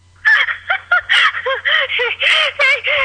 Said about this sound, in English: What the fuck? Jesus Christ, what was that? I think it was like a gaggle of geese.